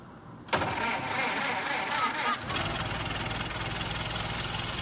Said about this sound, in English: All right, just put the key in and start the engine.